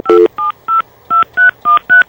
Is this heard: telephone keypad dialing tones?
yes